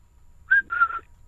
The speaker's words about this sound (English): I can whistle quite well. Give us a tune, then. Prove that you can whistle. Give us a tune.